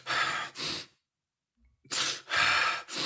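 A person demonstrates holding their breath: two breathy puffs, about a second of held-breath silence, then loud, sharp gasping breaths, with no talking.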